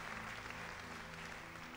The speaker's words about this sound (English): Praise Him right now. Would you just give Him a hand clap? Would you give Him a hand clap of praise?